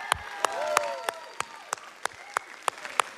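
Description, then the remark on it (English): An audience claps together in a steady rhythm, about ten sharp, evenly spaced claps, with faint voices and cheering murmuring underneath. The audience is clapping in praise of how good God has been. “We could have, for 40 minutes, clapped.”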